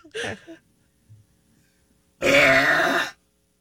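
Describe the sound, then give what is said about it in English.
A woman lets out one very loud, drawn-out, raspy burp lasting almost a second, after a brief gulping noise and a short pause, as she breaks the Guinness World Record for the loudest burp by a woman. “Breaking the loudest burp by a woman Guinness World Record.”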